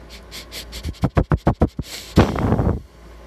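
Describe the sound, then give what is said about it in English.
A person mimics a fox sniffing at food: a quick run of about seven sharp nasal sniffs, then a longer, breathy snort-like exhale. No words are spoken. “And so the fox starts sniffing.”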